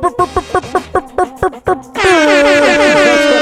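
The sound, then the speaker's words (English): A string of short, clipped honking bursts gives way to a loud, sustained air horn blast that blares steadily for the last second and a half, brassy. “I'm glad that you brought the air horn”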